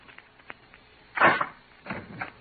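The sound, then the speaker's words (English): A door is opened: a few light clicks of the latch, then a louder wooden creak and scrape, followed by a second softer swing, with no one speaking. “Roger, open the door.”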